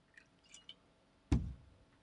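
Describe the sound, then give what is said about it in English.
A few faint clinks, then a quick splash of liquid into a glass that fades out within a second. Close and fairly soft, with no voices. “Let's pour one in here for ….”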